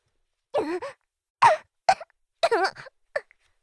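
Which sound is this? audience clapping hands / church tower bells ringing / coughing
coughing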